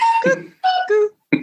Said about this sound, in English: Apologies, listeners. You can hear my cuckoo clock.